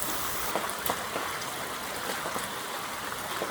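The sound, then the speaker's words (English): Steady rain hisses evenly throughout, a dense wash of falling water with occasional sharper drops tapping through, at a moderate level and with no voices. “The first time I remember planning out my life was a rainy day in grade 8.”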